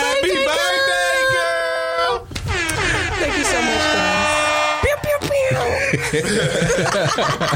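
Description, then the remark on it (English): A person loudly imitates an air horn with their voice, producing two long, blaring, buzzy blasts back to back, followed by rougher, choppy vocal noise that sounds like stifled laughter. “That's my best air horn impression.”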